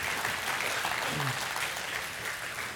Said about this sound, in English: And so can we give them a round of applause for being willing to come up here and share this morning?